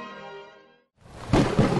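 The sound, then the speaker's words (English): A soft sustained musical tone fades into a brief silence, then a loud crack of thunder from a storm in the sky breaks in and rolls into a heavy, rumbling roar. “Our magic put a storm in the sky that has rendered the surface of our planet uninhabitable.”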